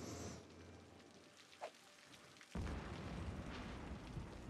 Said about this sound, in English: Oh, dang. Well, that was lightning.